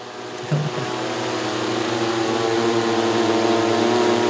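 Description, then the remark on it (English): A small vertical takeoff and landing aircraft, like a little helicopter with bicycle wheels, whirs steadily with a tonal, buzzing hum that swells slightly after a brief bump, continuing loud with no voices. “Yeah, they're pretty much like drones, little helicopters, vertical takeoff and landing.”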